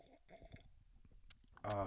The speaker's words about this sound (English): And pause for wine sipping.